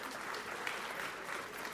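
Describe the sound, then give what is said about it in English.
An audience claps steadily for five volunteers, a dense wash of overlapping handclaps at an even, fairly loud level throughout, with no voices standing out. “Let's give them a clap.”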